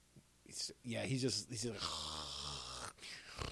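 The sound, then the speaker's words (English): A voice imitates a loud, ragged snore: Paul Pelosi's knocked-unconscious snore after being attacked in the head with a hammer. It has a couple of rasping, throaty snorts with a gurgling buzz, then a short breathy exhale at the end. “And then as, the struggle continues, you hear Paul Pelosi doing that knocked unconscious snore.”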